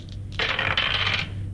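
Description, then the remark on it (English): A quick clatter of three six-sided dice rolled across a hard tabletop, a burst of rattling clicks lasting under a second, fairly loud over a faint background hum. “Okay, so just roll the 3d6. Yep, let me just get that up. Let me get my dice in my hand.”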